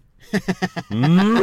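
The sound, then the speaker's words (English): A voice mimics a cow: four short, clipped lowing grunts in quick succession, then one long, loud moo that slides upward in pitch, with nothing else around it. “I didn't realise you could speak cow. I can.”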